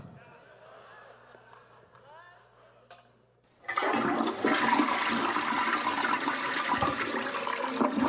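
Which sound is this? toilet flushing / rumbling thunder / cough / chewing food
toilet flushing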